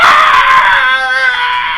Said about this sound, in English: Scream. It's like a death metal band on... Oh, my gosh. On Coca-Cola.